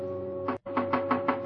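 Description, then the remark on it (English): A fist pounds on the glass window of a locked building lobby at almost midnight in a quick, steady series of about six heavy thumps, fairly loud, over a constant low electrical hum. “I pounded on the window.”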